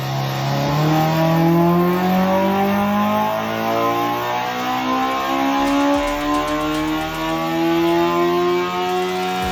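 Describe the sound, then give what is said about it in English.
A car engine revs hard and climbs steadily to 11,000 RPM, its loud whine rising in pitch for several seconds and sustained near redline, with no voices. “we couldn't rev the car in the SEMA convention, but here is a sound clip of that 11,000 RPM.”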